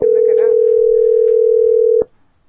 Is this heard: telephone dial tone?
yes